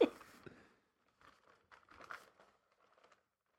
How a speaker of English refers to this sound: Always a rustling of paper. Oh, yeah, yeah. He's trying to sort his facts into order.